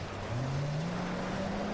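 vehicle, car engine

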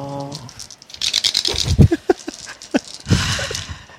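household object, dice being rolled

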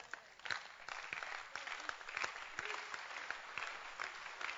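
crowd, audience applause

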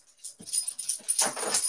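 animal, dog whimpering

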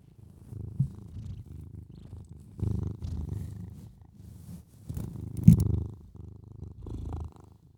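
animal, cat purring

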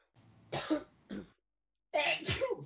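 human body sound, cough or sneeze

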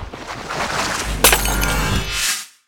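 sound effect, glass shattering

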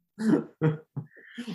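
human body sound, sneeze

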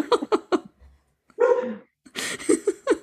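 animal, small dog barking

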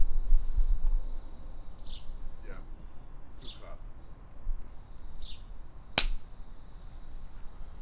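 human body sound, hand clap

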